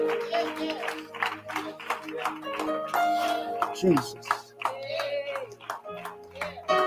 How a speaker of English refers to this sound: Give God a hand clap.